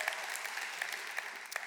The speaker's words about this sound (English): And everyone that loved him said amen, amen, praise God. Is that it? Just a little clap? Come on.